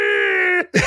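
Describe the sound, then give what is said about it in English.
A weird, shrill, creature-like screaming sound effect, like an Ewok, heard as Airwolf flies in the 1980s TV show. It holds one steady, buzzy pitch for over half a second, cuts off abruptly, then a short harsh noisy burst follows. No one speaks. “As for sound effects, there's that weird screaming Ewok sound.”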